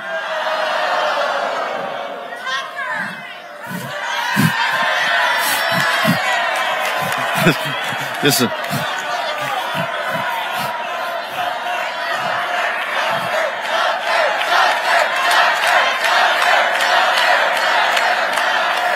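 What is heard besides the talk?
crowd chanting a name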